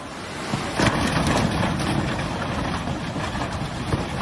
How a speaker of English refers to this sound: That subject has risen up the agenda following the devastating flooding in parts of western Germany last month. Here in the village of Rech, you can hear the waters of the River Ahr smashing vehicles against the bridge.